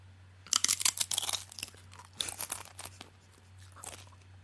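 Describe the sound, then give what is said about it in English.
Crisp crunching of a chip being bitten and chewed, bursts of crackly snaps clustered early then repeating in shorter chews, with a steady low hum underneath and no talking. “I will be guessing the brand and flavor of a chip. Mm-hmm. Based on its crunch.”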